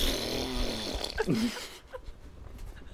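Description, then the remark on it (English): A low, buzzy fart rumbles for about a second and a half, its pitch wobbling and sliding upward before breaking off into a faint background hiss. “I'm gonna edit the fart back to thank you to the following patrons.”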